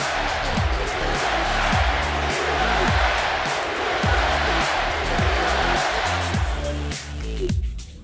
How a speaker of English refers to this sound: this is an interesting one because it's raining and we're outside